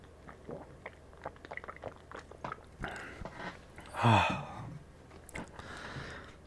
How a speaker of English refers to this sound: Let me take a sip of water first. Excuse me.